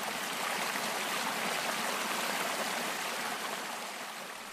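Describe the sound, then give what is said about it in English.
A babbling brook flows steadily over stones, its bright, continuous rush and gurgle holding an even level throughout before easing slightly at the end, with no voices present. “He went to sleep, listening to the beautiful sound of the brook.”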